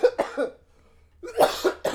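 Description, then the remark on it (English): A harsh fit of coughing: a quick run of three coughs, a brief pause, then another burst of several rough, loud coughs, with no talking. “that ain't no laugh. That's a cough.”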